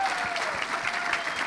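A crowd at a church service applauds steadily for the people who ministered that weekend, dense clapping filling the space at an even, sustained level throughout with no pauses or voices standing out.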